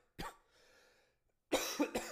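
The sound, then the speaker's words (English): A short harsh cough near 0.2 seconds, a pause, then a louder burst of two or three rough coughs, with no talking. “Yeah, keep coughing.”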